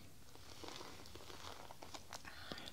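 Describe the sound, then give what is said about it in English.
Rustling and crinkling as a pencil case is handled, a steady stream of small scratchy clicks and crackles over a few seconds, with no voices. “I have here my pencil case.”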